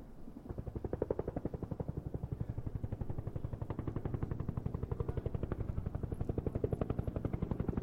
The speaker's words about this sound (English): BeeBop turned around and saw a helicopter flying directly at them.